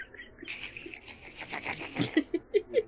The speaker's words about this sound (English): I'm like, who the fuck is typing that loud? Jesus.